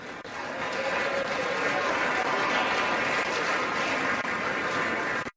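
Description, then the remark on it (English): A crowd applauds steadily for about five seconds, a dense, even wash of clapping with some laughter mixed in, holding at a constant loudness before cutting off abruptly, after Republican Mike Kelly of Pennsylvania names former Speaker of the House John Boehner. “John Boehner, a nice little crowd applause, some laughter.”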